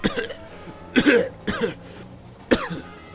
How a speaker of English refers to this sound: he tried to shout, but he was interrupted by a coughing fit. Young Aaron would have probably been scared to death hearing his father coughing the way he was.